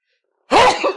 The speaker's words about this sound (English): Hold on, I have to sneeze.